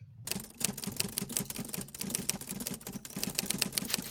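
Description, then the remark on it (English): Rapid, steady clacking of an old Underwood typewriter typing a brief, with dense overlapping key strikes continuing without pause for several seconds. No voices. “I think that's a brief being typewritten by an old Underwood typewriter.”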